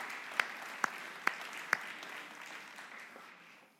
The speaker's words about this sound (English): But give them a round of applause too.